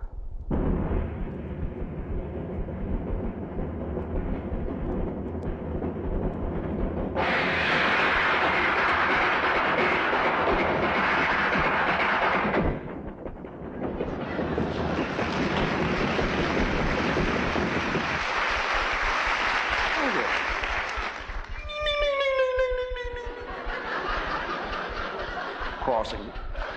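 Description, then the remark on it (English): A train rumbles steadily inside a passenger car, then as the door between cars is opened the roar suddenly swells into loud rattling, clattering noise between the cars, easing briefly before surging again, with a high metallic wheel squeal near the end. “Let's hear people going between the cars. You know, when you open the door, you pass from one car to the other.”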